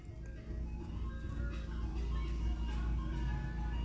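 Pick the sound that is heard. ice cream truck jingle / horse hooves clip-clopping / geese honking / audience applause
ice cream truck jingle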